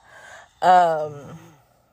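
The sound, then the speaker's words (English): A heavy breath followed by a sharp voiced gasp that trails off into a falling, breathy whimper as a young girl pants hard. “So, baby girl, you breathing hard.”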